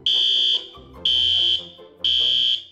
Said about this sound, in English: Someone triggered the alarm. There must be an intruder